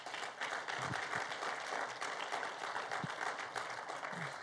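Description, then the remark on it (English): A church audience at Seaport Community Church applauds to welcome visitors, dense overlapping clapping filling the whole stretch at an even, sustained level with no pauses or voices standing out. “If we could, church, could we give them a round of applause?”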